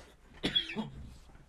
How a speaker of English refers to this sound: Hang on a second, I gotta cough.